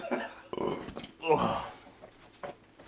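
A low, croaking burp rises loudly in the middle, bracketed by a few shorter throaty vocal noises.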